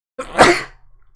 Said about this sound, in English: You guys just saw my sneeze face. I'm so sorry. That was terrible, man.